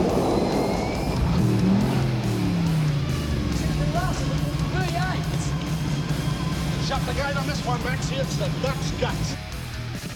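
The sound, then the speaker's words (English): A 351 V8 race car engine drones loudly and steadily for several seconds, its pitch sweeping up and down with gear changes and throttle, while faint chirpy tones flicker above the roar. “Just listen to 351 work.”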